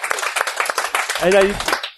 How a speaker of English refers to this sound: And thank you to our awesome audience. Yes, thank you guys. Give yourself a round of applause for our audience.